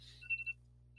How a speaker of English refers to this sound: Sorry about the alarm. I've got a coaching call coming up here in a little bit. So the only way I can remember everything through the day is if I set alarms. So randomly through the day, my alarm's going off.